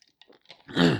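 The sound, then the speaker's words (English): Someone takes a sip of Dr. Pepper soda: a few soft wet mouth clicks, then a louder swallow ending in a short, throaty exhale. No talking. “Sorry, I just wanted to get a sip off my Dr. Pepper.”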